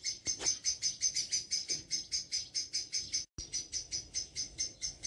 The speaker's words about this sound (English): Oh dearie me, you can hear, what you can hear is Mrs. Blackbird.